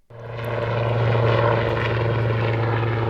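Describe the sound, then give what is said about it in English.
A black helicopter takes off into clear blue skies at Williamsport Regional Airport in Williamsport, Pennsylvania. Its engine and rotors swell quickly into a loud, steady, droning roar with a deep hum underneath. No one speaks. “A black helicopter takes off into the clear blue skies above Williamsport Regional Airport.”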